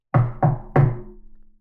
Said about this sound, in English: And they both slip into the tub just as a knock comes on the edge of the clamshell again.